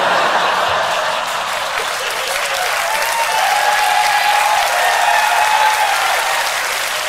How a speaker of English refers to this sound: And everybody claps.